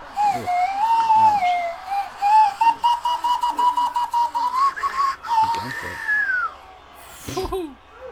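A slide whistle is played during a quiet part of the film Rocky, a long, wavering tone that glides up and down in pitch for several seconds, loud, then fades into a short burst of vocal noise.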